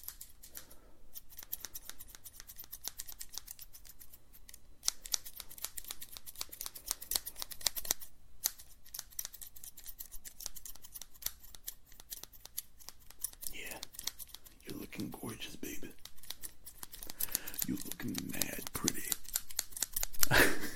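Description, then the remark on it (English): Scissors snip over and over in quick, uneven bursts of crisp metallic clicks, with brief pauses between runs, as in a mock haircut; soft murmuring voice sounds join toward the end. “Here, let me give you a haircut.”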